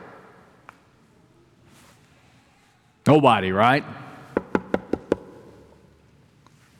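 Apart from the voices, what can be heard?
knocking on a door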